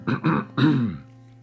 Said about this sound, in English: coughed loudly.